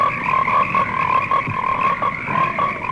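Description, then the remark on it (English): A dense chorus of frogs croaking continuously in the trailer for the American International Pictures film Frogs, many voices overlapping in a steady, pulsing drone with rhythmic trills, fairly loud, with no talking. “Frogs lay hundreds of millions of eggs every year. What would happen if they all hatched?”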